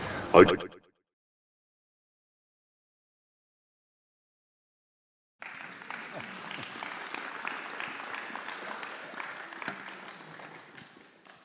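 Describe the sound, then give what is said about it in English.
A brief sound at the start, then silence for several seconds before an audience that has just watched a film breaks into steady, dense applause that holds for about six seconds and fades slightly at the end. “A round of applause probably suggests that you enjoyed watching that.”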